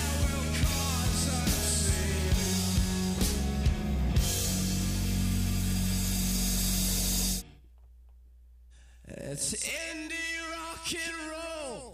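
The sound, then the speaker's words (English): A loud, dense rock track plays, cuts to near silence, then sustained sung vocal lines return with a delay echo from the Echo Farm default setting repeating the notes behind them. “Yeah, you can really hear that echo. Yeah, from the Echo Farm default setting.”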